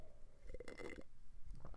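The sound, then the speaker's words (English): A single quiet sip of hot Yogi brand honey lavender tea, a brief slurping draw followed by a soft gulp, with no talking. “I'm drinking tea right now, honey lavender. I'm going to take a sip.”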